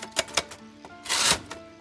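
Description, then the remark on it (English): A manual typewriter clacks out a few crisp, irregular keystrokes, fairly loud, with a brief louder mechanical rattle in the middle and no voices, as reports are typed overnight in a room. “He took them back to his room overnight with his typewriter, and he worked on them there, and he finished them off.”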